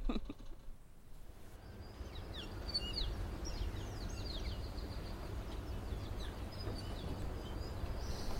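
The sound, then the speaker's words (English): Scattered bird chirps and short calls ring out high above a steady, low ambient hum, a busy mix of small birds calling among the leaves and branches of a rainforest canopy, with no one speaking. “So if you take a listen, you can hear a bit of chirping amongst the leaves and the branches of the trees.”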